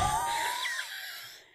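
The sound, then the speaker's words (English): Breathy panting with a faint whistling wheeze running through it, a steady airy rush that tapers off at the end. No one speaks. “Oh, it's her panting.”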